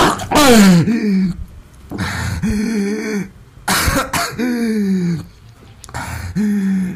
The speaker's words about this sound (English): Yeah, he just had to take those things out. He's gasping for air here.